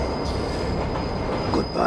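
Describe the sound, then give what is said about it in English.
In a scene from the film The Matrix, a train rumbles loudly along the tracks below a station platform as it approaches two men fighting on the tracks, its steady mechanical roar filling the scene with a faint high squeal of wheels on rail, while a man briefly speaks over the noise. “He wraps his arm around Neo's neck and holds him there as a train approaches them both.”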